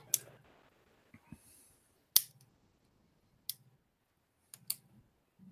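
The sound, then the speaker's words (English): Scattered, irregular clicks and soft clacks of about a dozen people typing on keyboards in their office cubicles, keys struck in short bursts with pauses between, fairly quiet, with no voices. “They're just typing away in their cubicles.”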